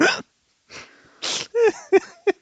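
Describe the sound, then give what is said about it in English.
A sharp sneeze bursts out after a couple of breathy intakes, followed by a few short voiced grunts or sniffles. “Oh, God bless you.”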